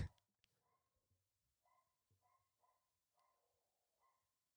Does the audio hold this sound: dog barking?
yes